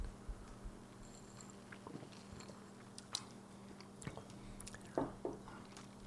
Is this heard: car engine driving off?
no